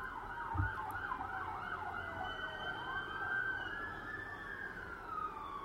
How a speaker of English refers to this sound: There's the siren. I'll leave that in for you. It's South London.